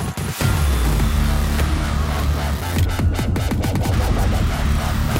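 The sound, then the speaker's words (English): A loud inline-four engine drones steadily, then revs up and down with rising and falling pitch over a few seconds. No one speaks. “The engine we know and love as the inline four.”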